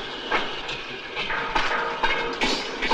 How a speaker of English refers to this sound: In Stalker, it's that noise. I mentioned it. I don't really have a great description for it, but it's in the railroad scene and it appears again and again. It's kind of like a mechanical cricket